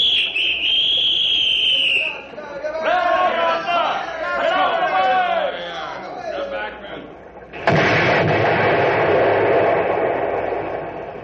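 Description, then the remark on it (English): A shrill warning whistle, then excited voices shouting, before a sudden loud dynamite blast set on a ten-second timer erupts into a long roar of crashing, rumbling debris as the top logs are blown off a river log jam pile. “All we did was blow a few of them top logs off the pile.”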